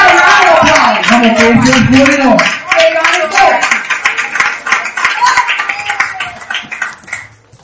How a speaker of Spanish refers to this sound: Yes! Thank you to the Lord. Que den un aplauso al Señor. Vamos.